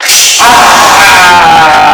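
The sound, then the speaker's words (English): A voice imitates a dragon breathing fire: a loud, raspy roar that starts as a breathy hiss and swells into a sustained, strained growl with a hoarse tonal edge, held for about two seconds. “Wanders around, breathing fire like this.”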